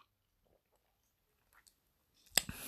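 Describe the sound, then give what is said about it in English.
A quiet sip from a glass of porter beer, with faint mouth clicks and swallowing sounds, ending in a sharp, louder knock as the glass comes down. “Let me just get a sip of my porter.”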